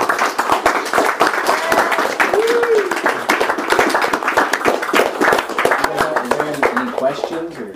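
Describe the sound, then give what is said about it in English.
A room full of people applauds steadily for several seconds, the dense patter of many hands filling the space, with a few voices calling out and murmuring underneath. “Hand clap.”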